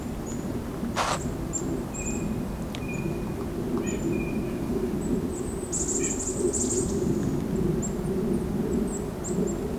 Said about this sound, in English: Nasal call, that's the white-breast nuthatch. And that's the black-capped chickadee with the chickadee-dee-dee call.